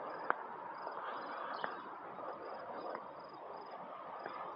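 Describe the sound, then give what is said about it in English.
A faint, steady chorus of night insects or frogs, with a thin high-pitched trill pulsing evenly over a soft hiss of background noise and a few brief clicks. “Well, we got crickets now, kids. Or frogs. It could be frogs.”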